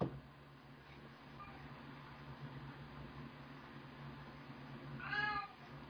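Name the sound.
cats meowing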